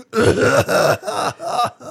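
Four harsh, raspy coughs burst out in quick succession, close and loud, each one throaty and strained with a hoarse, hacking edge.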